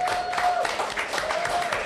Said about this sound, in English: So a big round of applause for the good people of Hopheads.